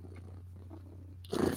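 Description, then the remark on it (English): A voice imitates a cat's purr: a low, steady rumble that runs quietly for over a second, then gives way to a louder, breathy burst at the end. No talking. “Because, baby, if I'm purring, I'm a happy girl, and I'm just saying that you want her.”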